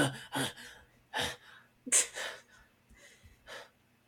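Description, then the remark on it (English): Heavy, ragged breathing of a dwarf calming down after entering a rage in combat: a series of loud gasping inhales and exhales in uneven rhythm, with one sharper, harsher breath in the middle and no talking. “I don't like their breathing.”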